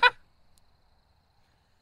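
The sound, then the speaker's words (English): A single loud, harsh bird squawk bursts out, honk-like and abrupt, then quickly gives way to near silence with only faint background sounds. “Oh, wait. What was that? What's the bird's name again?”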